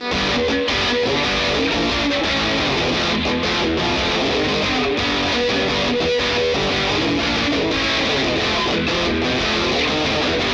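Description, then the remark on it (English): A grungy, garage-style fuzz electric guitar, a Stratocaster with FSC 59 wound pickups run through a Surfy Bare Metal spring reverb with a harmonic jerculator kicked in, plays continuously and loud, with thick distorted chords and notes ringing out, no voices over it. “We get a cool grungy, garagey sound out of it too.”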